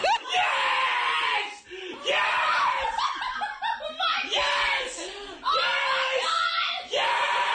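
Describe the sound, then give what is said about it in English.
A Melbourne supporter screams loudly in excited, repeated bursts as Max Gawn kicks the winning goal after the siren, each long cry breaking into strained, laughing yelps between them, dominating the scene. “he's still screaming right now, 48 hours later.”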